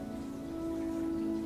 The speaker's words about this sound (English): You can hear the drops of the rain falling upon the earth and upon the trees. And you're suddenly taken aback by how the rain is quenching the thirst of the earth.